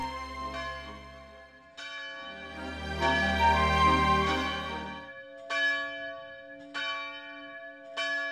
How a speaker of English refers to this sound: Oh, and bells, bells, church bells, of course, church bells. Oh, I forgot.